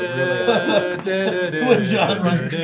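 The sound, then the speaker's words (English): A voice mimics the bionic running sound effect from The Six Million Dollar Man, a steady stream of wordless warbling tones that glide up and down in repeated swoops for a few seconds. “really the $6 million man sound effect.”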